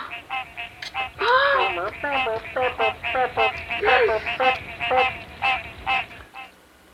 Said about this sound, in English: In the cypress swamps of southeastern Missouri. Green tree frogs sing in chorus from early May to August really and lay their eggs the in early summer. So the voice of a male green tree frog is a series of quacking sounds.